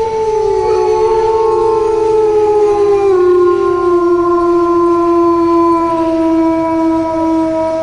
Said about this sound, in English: I am pretty sure that was a wolf.